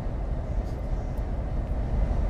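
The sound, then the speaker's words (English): A train engine idles close by, a steady, heavy low rumble that drones on without a break and holds an even loudness throughout. “Turn off that engine, train. Save some fuel.”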